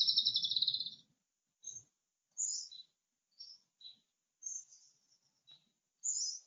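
Birds chirp outdoors in short, bright bursts spaced irregularly, opening with a longer trilling phrase, then scattered single calls and brief flourishes with no voices.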